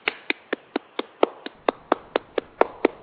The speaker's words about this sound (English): I thank you, and I'm going to clap for you right now.